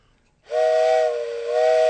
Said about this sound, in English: Hey, that sounds like a choo-choo train.